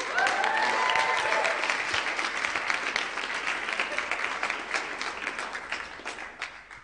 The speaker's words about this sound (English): I'm delighted tonight to make welcome, I'll ask you to give her a big round of applause,